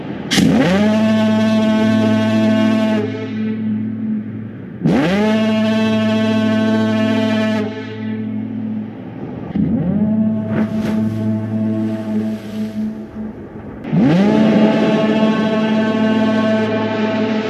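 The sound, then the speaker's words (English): A deep, blaring foghorn in a movie sounds in four long, loud blasts, one after another with barely a pause, each a rich, buzzing low tone that swells in at the start and holds steady. “Just this endless foghorn.”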